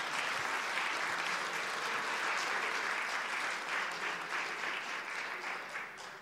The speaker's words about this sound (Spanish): Dale un aplauso fuerte, Señor.